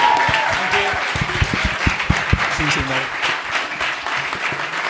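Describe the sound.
A crowd claps loudly and steadily, dense overlapping applause filling the room, with a few sharper individual claps standing out and a faint murmur of voices beneath.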